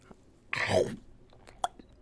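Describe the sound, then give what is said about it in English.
A crunchy bite of the last of a taco, a burst of crackling followed by quieter wet chewing and a sharp click, with no one talking. “And that's the last of my taco.”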